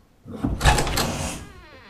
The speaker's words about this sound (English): I'm sure you've noticed that you've accidentally triggered the secret door to close, trapping me inside.